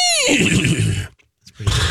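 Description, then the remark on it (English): A loud horse whinny opens with a high, wavering squeal that drops into a rough, breathy rumble, breaks off briefly, then resumes with another snorting burst. “Do you guys want to hear my horse?”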